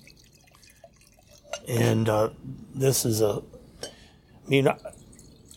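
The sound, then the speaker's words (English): 13 Olivet Lane Vineyard Chardonnay wine trickles softly into a glass in a steady, faint stream beneath a man talking in short bursts. “this wine here, the I'm getting ready to pour you, John, the 13 Olivet Lane Vineyard Chardonnay”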